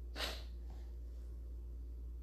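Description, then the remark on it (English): A quick, sharp sniff through the nose, brief, followed by a much fainter second intake of breath. No one speaks. “Luna Moon raised her schnoz, which is another name for her nose, and gave a quick sniff.”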